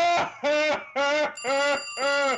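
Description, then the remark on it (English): A telephone rings in five quick, evenly spaced bursts, each a bright, buzzy electric trill with a metallic harmonic shimmer, loud and alone with no talking. “Telephone's ringing. I can hear it.”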